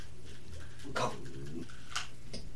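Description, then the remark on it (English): A dog gives a sharp bark, followed by a second shorter bark a moment later, over a steady low background hum with no one talking. “What are you barking at?”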